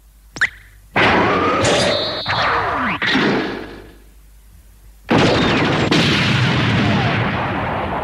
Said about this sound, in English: And Dagger, you know, basically pops up Jackhammer's turret cap and blast the doors.